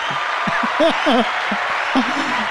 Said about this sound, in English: Does he deserve a round of applause? Yes, I think so.